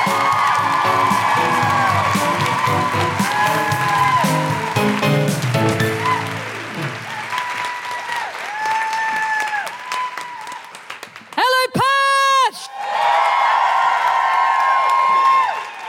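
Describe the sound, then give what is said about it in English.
A show audience applauds steadily to close the first half as a performer is introduced, with scattered high whoops and cheers rising over the clapping and a loud, piercing whistled whoop near the end before the applause swells again. “To close the first half and leave you on a real high, put your hands together and make incredible woohooing noises for the”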